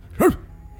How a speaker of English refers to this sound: I guess it's wolves can bark too, right?